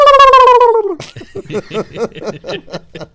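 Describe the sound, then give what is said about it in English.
A person imitates a turkey gobble: a high, wavering descending warble followed by a rapid, rhythmic burst of throaty gobbling pulses, about nine quick beats, fairly loud. “Oh, the gobble?”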